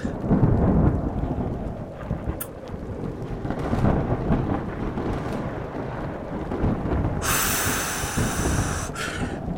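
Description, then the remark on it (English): A thunderstorm with deep, rolling thunder rumbling continuously beneath steady rain, the downpour hissing brighter and harder near the end. No voices, just the storm, loud. “This is going to sound epic because I know your brain, you're going to have storm noises in the background, and that's going to be fan-fucking-tastic.”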